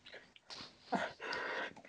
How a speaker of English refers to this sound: I don't know why I keep sneezing today.